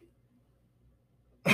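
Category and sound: human body sound, cough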